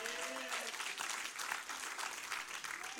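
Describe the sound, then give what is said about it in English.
A crowd applauds steadily for about three seconds, a dense, loud wash of many hands clapping at once, with a faint voice briefly audible underneath at the start, applauding the team who ran the VBS. “and her host of Merry Men and Women, we applaud you guys.”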